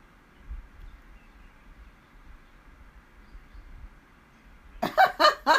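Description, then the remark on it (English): A steady low hum runs under near silence, then birds break in loud at the end with three rapid, harsh calls in quick succession. No one speaks. “I am going to do a quick check to make sure y'all can hear me and that the birds aren't too loud.”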